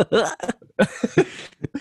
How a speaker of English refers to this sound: Did you just hiccup? What the hell was that?